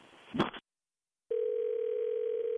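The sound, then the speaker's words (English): A brief burst of line noise and a click as a phone call is disconnected, cut to silence, then a steady, unbroken telephone dial tone hums at a single mid pitch, fairly loud and alone. “Yeah, I think we were disconnected.”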